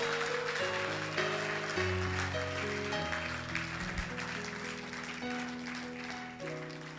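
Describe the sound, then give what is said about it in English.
An audience claps steadily for the Lord Jesus, a dense crackle of many hands, over sustained keyboard or organ chords that shift every second or so, with no voices. “Clap for the Lord Jesus.”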